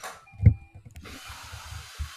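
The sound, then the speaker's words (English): A Roomba robot vacuum cleaner buzzes along with a steady mechanical hum and hiss, broken by soft, uneven low thumps and rumbles as it works. No one speaks. “And that noise that you guys hear, that buzzing noise, is the Roomba working.”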